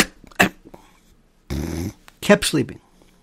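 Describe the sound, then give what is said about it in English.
A man imitates a radio caller snoring on the phone line, making a drawn-out, rough, rasping snore followed by a couple of short snorting breaths, fairly loud. “kept sleeping, kept snoring.”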